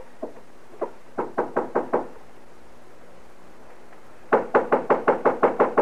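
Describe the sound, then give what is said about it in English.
Firm knocking on a hotel room door in Dodge in two bursts: a few uneven raps, then a quick run of about five, a pause, and a louder, faster series of eight or nine sharp knocks, with no voices. “All right, knock on the door.”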